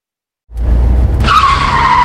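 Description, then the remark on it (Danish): A car's tires skid loudly, rumbling low at first and then breaking into a sustained high-pitched squeal that holds steady to the end, prominent with no voices. “Ups, trækker din bil til siden?”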